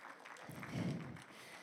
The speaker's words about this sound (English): Well, I want to honor all the dads in the house this morning. Thank you for what you do. Thank you for being who you are. Yeah, can we celebrate and just cheer for our dads?